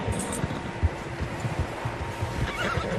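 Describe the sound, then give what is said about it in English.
Horses neigh and whinny against a steady outdoor rumble, with soft hoof thuds scattered throughout; the calls repeat over a few seconds. “Tracks. Horses, quite a few of them.”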